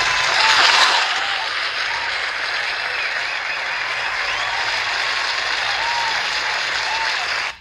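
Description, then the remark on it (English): A crowd applauds steadily for several seconds, a dense wash of clapping that swells slightly at the start and then holds at an even, loud level until it cuts off. “Cue the applause.”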